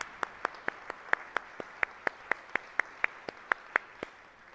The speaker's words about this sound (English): A round of applause for that, yeah.